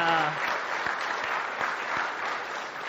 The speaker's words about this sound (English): I think the second service likes you better. First service, I had to ask you to clap, and this service, you just clap on your own, so that's great.